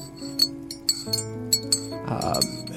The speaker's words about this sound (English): Goes over to a cupboard and grabs a cup. Slams it on the counter and starts to pour a coffee.